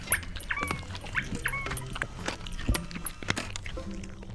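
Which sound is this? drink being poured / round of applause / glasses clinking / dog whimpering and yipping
dog whimpering and yipping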